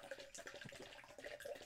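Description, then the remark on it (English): Grape juice is poured into a cup, a steady splashing trickle with bubbly gurgles lasting under two seconds, with no one speaking. “I'm going to pour this kind of away.”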